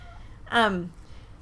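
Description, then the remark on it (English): A single short meow from a cat named Neo, fairly loud, with a bright tone that bends downward in pitch as it fades, over faint background noise. “Looked, and our one neighbor thought it was our cat because it looked so much like Neo. Hey, there's Neo.”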